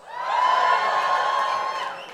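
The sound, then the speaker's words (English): A crowd at the live show This Paranormal Life Live cheers and whoops for about two seconds, a dense, bright roar of many voices that swells quickly, holds steady, then begins to fade at the end. “Let's get a little cheer.”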